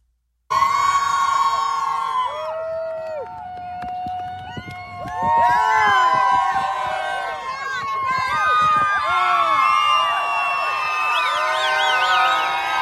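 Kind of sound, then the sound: crowd, rally crowd cheering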